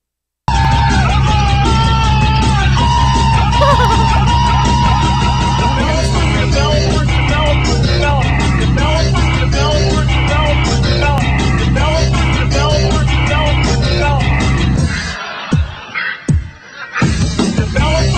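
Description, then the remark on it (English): A man screams and yells loudly over a dense, roaring background, the sound coming from a played recording that runs continuously for about fifteen seconds before breaking off abruptly. “I'll just jump ahead a little bit so you can hear the screaming.”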